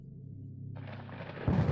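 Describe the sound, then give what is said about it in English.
Deep thunder from a storm at 10:30 p.m. on a very windy night rumbles low and steady, then swells into a broader roar and ends with a heavier boom, rolling and echoing through the mountains, heard from a tent with rain hitting down on it. “I wake up at 10:30 p.m. to the sound of some crazy thunder rolling through the mountains and the rain hitting down on our tent.”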